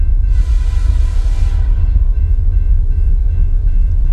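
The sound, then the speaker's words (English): A heavy, steady low rumble like a train rolling along tracks, with a brief hissing wash of high noise early on, loud with no voices. “17-year-old Kevin Ives and 16-year-old Don Henry were struck by a train.”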